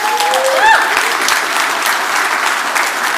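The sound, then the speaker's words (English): An audience at a sermon breaks into steady applause to thank the person who makes the graphics, dense clapping at a consistent volume, with a few whoops rising briefly at the start. “let's give Kristen a round of applause”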